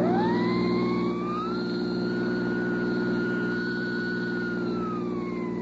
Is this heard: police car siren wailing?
yes